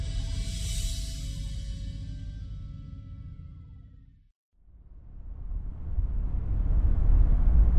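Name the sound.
road traffic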